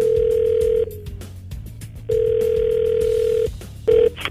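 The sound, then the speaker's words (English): A telephone ringback tone on an outgoing call to a woman: two long steady tonal rings separated by a pause, then a brief start of a third, clear with no talking. “We are going to call her up and try to get answers from her.”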